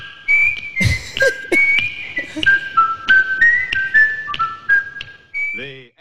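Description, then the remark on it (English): A clear whistled rendition of the theme tune of The Andy Griffith Show, a run of steady notes rising and falling, interrupted by a few sharp clicks, ending with a brief vocal sound. “The whistle gives it away.”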